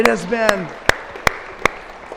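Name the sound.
audience applause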